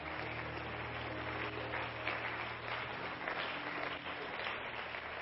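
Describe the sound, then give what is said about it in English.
A church audience clapping steadily and enthusiastically in praise of the Lord, dense continuous applause with a low sustained musical drone underneath, fairly loud throughout. “Let's give the Lord a hand clap of praise together.”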